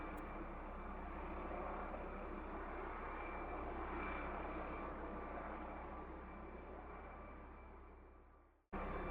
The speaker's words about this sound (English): Wait, how did you get the helicopter? I stole it.